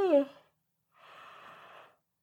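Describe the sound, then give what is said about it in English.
A person yawns: a short voiced, falling groan, a brief pause, then a long, soft, breathy exhale trailing off into quiet. “I'm sorry. I'm yawning. It's me. It's not you.”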